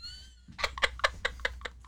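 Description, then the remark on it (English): A cat meows repeatedly in a quick, steady series of short, bright cries, about five per second, moderately loud, with a brief high tonal sound just before. “I think those are the cats.”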